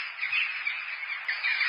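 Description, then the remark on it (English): A dense, continuous clamor of about 1,000 birds honking at once, like a large flock of geese, loud and steady with no pauses, and no one talking. “Yes, about 1,000 of Bird's friends answered his cry for help.”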